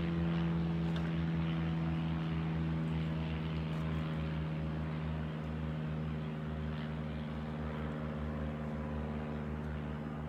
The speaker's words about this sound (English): We got the airplanes going by. I'll wait just a second.